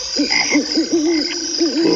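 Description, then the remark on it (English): Frogs from a Budweiser beer commercial croak in a quick series of low, swooping calls, clear, over a steady faint hiss, with no one talking. “Yeah, I was going to say Budweiser commercial. Bud. Why? At the frogs.”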